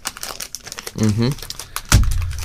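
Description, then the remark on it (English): A Kit Kat block wrapper crinkles in quick, irregular crackles, a short voiced murmur comes midway, then a louder rip as the packet tears open, followed by continued rustling. “So you've gone with the Kit Kat block version. Okay, well, let's find out what they're doing to the Kit Kat.”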